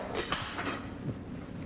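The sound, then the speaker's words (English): Someone jumps on a piece of tough plastic on the floor: a few dull thumps with scraping, creaking plastic noise, busiest in the first half second, then settling into a quiet rustle. “Here, why don't you try jumping on it on the floor?”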